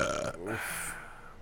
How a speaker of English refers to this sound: That burp tasted like pizza and sour cream.